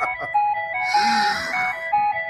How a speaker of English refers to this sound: Looks like you're on the ice cream machine or truck. Okay, ice cream truck.